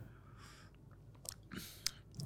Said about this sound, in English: All right, so I guess let's both take our first sips and then I'll describe, then you describe.